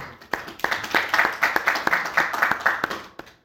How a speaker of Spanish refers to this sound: Vamos a dar palmas al Señor por eso.